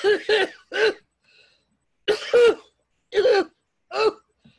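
A person, out of breath after a fight, wheezes and hacks up a lung: a series of harsh, loud coughs in short clusters of one or two bursts with brief pauses between, about seven coughs in all, with no talking.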